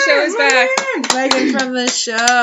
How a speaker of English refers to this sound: Do you see her knocking on the glass window? She's out there.